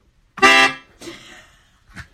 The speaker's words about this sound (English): I think the fart overpowered your... You must have done it exactly at the same time.